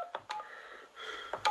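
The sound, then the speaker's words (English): Telephone dialing tones on a phone line, a quick run of steady beeping pitches broken by short clicks, fairly clear with no talking over them. “All right, we'll wait for that phone to clear. Something going on with that line.”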